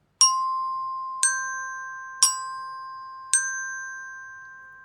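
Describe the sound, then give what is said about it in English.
Four bright metallic tones struck on resonator bells at a steady, unhurried pace, alternating between Do (the red bell) and So (the turquoise bell), a lower and a higher pitch, each ringing on clearly and decaying slowly amid otherwise quiet. “I will be using Do, which is red on the resonator bells, as well as So, which is turquoise or light blue on the resonator bells.”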